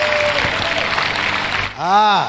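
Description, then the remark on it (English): An audience at a church service claps hands together after a prayer in a dense, steady burst of applause, then fades as a single voice starts speaking loudly. “Clap your hands. Clap your hands.”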